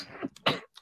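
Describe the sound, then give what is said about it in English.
A single sneeze: a short breathy intake followed by one sharp, noisy burst, then quiet. There is no talking. “Sorry. Bless you. Bless you.”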